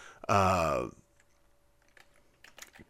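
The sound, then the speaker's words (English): A drawn-out voiced groan with falling pitch, then light, irregular clacking of fingers typing on a computer keyboard to look something up, soft, continuing in quick scattered bursts. “Clickety-click. Yeah, the keyboard, then all well.”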